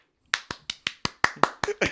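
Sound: clapping sound effect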